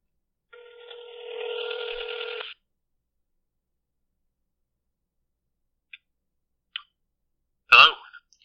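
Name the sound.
telephone dialing and ringing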